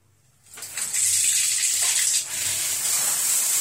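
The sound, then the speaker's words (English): Cold shower water switches on after a brief quiet start and runs in a steady, bright hissing spray, dipping for a moment midway before pouring on evenly. No one speaks. “You can take cold showers.”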